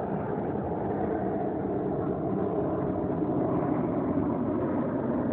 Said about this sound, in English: And again, this is the invasion of privacy as a plane begins to fly over while I am in the midst of using my communication device documenting the POC.